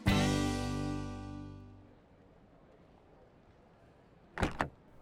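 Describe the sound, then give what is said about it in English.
A ringing musical tone fades out, then after a quiet pause a car door gives two quick thumps in a row as a man climbs out of his car and swings it shut. “Craig winced in pain as he got out of his car”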